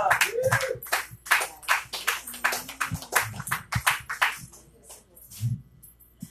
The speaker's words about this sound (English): Can we get a big round of applause for …?